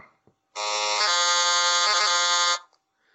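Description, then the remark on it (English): A harsh, buzzy electronic tone from the Atari video game Pitfall blares loudly for about two seconds, holding a steady pitch with a couple of brief warbles before cutting off abruptly. “That is Pitfall.”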